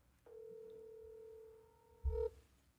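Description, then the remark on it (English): A steady, continuous phone dial tone hums for about two seconds while calling back a missed call, then cuts off with a brief low thump as the line clicks. No one speaks. “I want to take a sales call right here on the podcast.”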